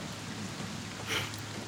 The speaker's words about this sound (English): We'll just listen to the rain, it's fine. It's nice.